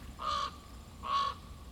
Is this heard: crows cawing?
yes